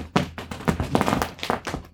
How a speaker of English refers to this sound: Just everybody should know that's actually the sound of a cat zooming around the back of the chair.